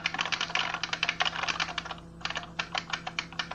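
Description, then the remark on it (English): Rapid keyboard typing as someone types a paper: a steady stream of crisp key clicks with a brief pause midway before the tapping resumes at the same quick pace. “You know, just typing your paper for you.”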